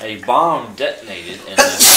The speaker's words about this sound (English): Bless you, bless you. Bless you.